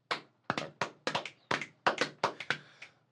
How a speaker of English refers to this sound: We were filmed in front of a live audience, in case you guys were curious about the claps. Give yourself a round of applause, live audience.